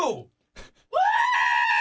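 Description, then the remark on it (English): A person imitates a concert-goer's scream: a brief falling wail, a short pause and a soft burst, then a loud, strained, sustained yell that abruptly cuts off. “And then it just, like, and then the scream just cuts off as though he, like, fell face first into a railing or something.”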